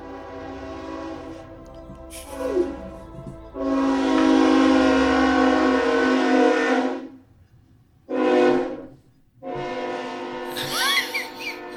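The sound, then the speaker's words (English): A loud train horn blares in several long, sustained blasts with short gaps between them, harmonic and piercing, over the rumble of a passing train. “At this point, like, we get it. There's trains.”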